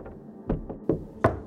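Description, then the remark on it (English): Knocking on a mine wall: four dull, hollow knocks at an uneven pace, the last one sharpest and loudest, with no voices over a faint background. “Knocker comes from the knocking on a mine wall that can be heard before a collapse.”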